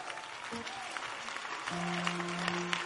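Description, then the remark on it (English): A crowd in Accra claps steadily throughout, a dense crackling patter of many hands at moderate volume, with a sustained low hum or tone entering about halfway through beneath the applause. “Those who are not clapping, I know I am wasting my time on you.”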